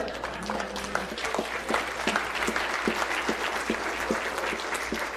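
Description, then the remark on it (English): A crowd claps steadily for about five seconds, a dense patter of many hands with a few sharper individual claps standing out at a regular pace, fairly even in loudness throughout. “Apparently we are going to clap.”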